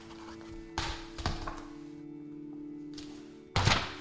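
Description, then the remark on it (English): Sharp wooden thunks of William Tell's crossbow arrow striking an apple on a boy's head and tearing it in two, three hits in all, with a louder final impact, over a steady low hum and no talking. “William Tell let the arrow fly.”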